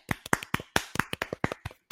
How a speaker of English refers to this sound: You get a golf clap.